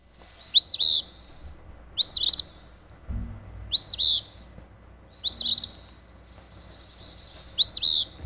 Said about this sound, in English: So if you can hear that well enough, you can tell that it actually seems to be saying Phoebe. It's got a very rough sound to it, but it says Phoebe.